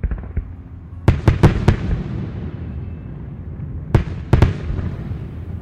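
Fireworks bang in two clusters, four sharp reports followed later by three more, each crack echoing and rumbling off into a low, continuous background roar.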